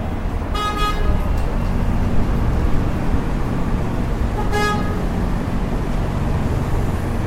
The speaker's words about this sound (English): More honking. Street.